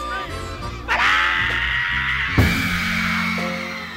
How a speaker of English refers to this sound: What's the magic of that scream?